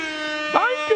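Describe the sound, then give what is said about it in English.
A brief siren sound effect: a bright, buzzy sustained wail about a second long, with a couple of quick pitch dips and swoops before it cuts off. “Where's my sirens at?”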